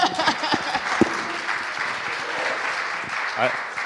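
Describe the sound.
A room full of people claps steadily for about four seconds, a dense, even crackle of many hands, with a few voices calling out briefly beneath it.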